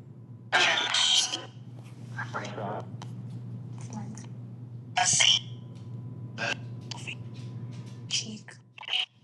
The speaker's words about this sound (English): The person who is blindfolded, that was me in this case, can't hear the questions, only what's coming through the headphones, audio that sweeps AM and FM radio bands, chopping up the signals. Okay, this is how it will sound.